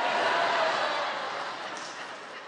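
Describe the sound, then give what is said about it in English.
A church audience and choir clap together during a sermon, a dense, steady wash of applause that holds for a couple of seconds and then slowly tapers off, with no voices over it. “And they're clapping.”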